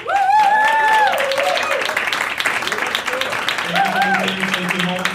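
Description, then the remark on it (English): A crowd applauds loudly and steadily for the whole stretch, with whoops and high cheering voices rising over the clapping near the start and again toward the end. “I want everybody to give yourself a hand of applause for being here on a Sunday evening.”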